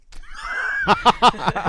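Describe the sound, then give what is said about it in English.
A person lets out a theatrical scream of fright, a drawn-out high shriek that breaks into four choppy, sobbing pulses, fairly loud. “I'm going to throw my hands up in front of my face and scream.”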